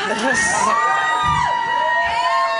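A live crowd cheers loudly, with overlapping whoops and high-pitched yells rising and sliding over a dense, continuous roar of voices throughout.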